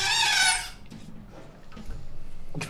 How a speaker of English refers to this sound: The door got shut. The window got closed.